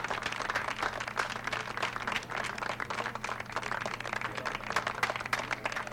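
A crowd applauds steadily, many hands clapping in a dense, continuous patter that holds for the whole stretch, with a faint low hum underneath.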